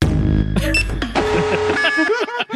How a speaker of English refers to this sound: Ka-chunk. You hit the exit button. The klaxon blares once more.